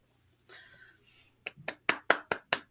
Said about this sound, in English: Oh, I don't think I've ever got claps on the podcast before. That makes me so happy.